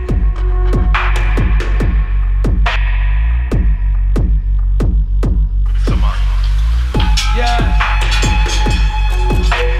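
A dub music track played from a newly received dub plate, with deep, steady bass under sharp, regularly spaced percussive hits. Bright, hissy layers and sustained tones thicken the mix in the second half. No one speaks.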